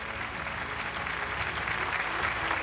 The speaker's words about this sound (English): Thunderous applause rang out in the hall.